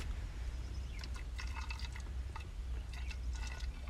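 Liquid pours into a glass in two short, gurgling spurts, the second after a brief pause, fairly quiet over a low background rumble with no one speaking.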